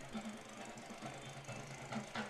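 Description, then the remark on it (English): A small motor runs steadily with a rapid, rattling putter: a little cart engine running across the way at a football field after a game. The droning, buzzy tone holds throughout without a break. “Sounds like somebody's jackhammering out. I think it's Ontario's little cart across the way.”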